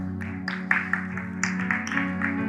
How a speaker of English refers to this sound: That's a golf clap.